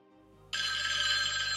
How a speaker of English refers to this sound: Oh, my goodness. Sorry. Is that phone from the 1960s? Yes, it's the universal phone as heard in Columbo and all of the rest of those. That was a brilliant ring. I liked it.